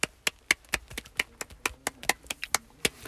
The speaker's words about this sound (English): Got mostly B's in all my classes. Round of applause.